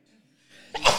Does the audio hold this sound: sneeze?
yes